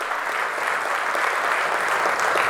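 crowd, audience hand clapping

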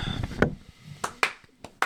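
human body sound, hand clap

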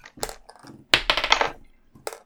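household object, dice rolling

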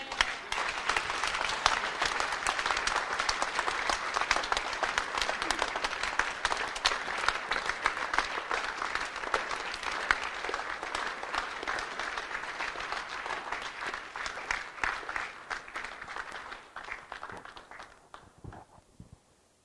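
crowd, audience applause

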